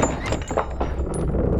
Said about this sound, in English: She stands before the basement door. This 50-something-year-old woman flaming with theatrics, really putting on a show of suspense for me. She puts her finger to her lips and throws the door open.